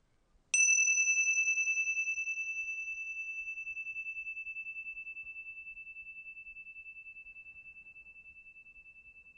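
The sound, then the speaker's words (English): A single meditation bell is struck once, ringing with a clear, pure tone that slowly fades over several seconds with a gentle pulsing shimmer, alone against near silence. “So what you're doing is you're noticing the sound of the bell moving through time.”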